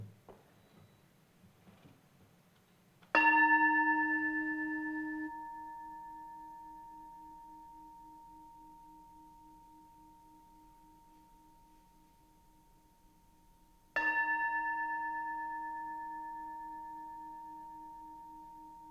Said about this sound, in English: And now, as we prepare to celebrate and to worship, I invite you to take a deep breath, to open your mind, your heart, your body to this sacred occasion, and let the sounding of the bell call you fully into worship.